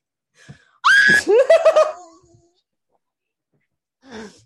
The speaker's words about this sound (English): thinks there's something wrong because I screamed.